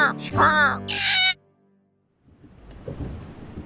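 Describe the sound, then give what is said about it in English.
A parrot lets out a few loud, raspy squawks, ending in a harsh screech, then falls silent before a low, rumbling wash of noise rises. “But there might be a parrot.”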